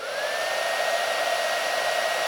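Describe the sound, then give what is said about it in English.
A hair dryer blows steadily and loudly, a constant whooshing roar with a faint high motor whine running through it, no voices present. “Justin, right here, hairdryer.”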